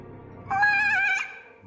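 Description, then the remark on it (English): A voice imitates the half meow of a liquid kitty alarm clock: one short, nasal, mid-pitched cry lasting under a second, holding fairly steady before cutting off abruptly, with no talking around it. “And then it let out this half meow.”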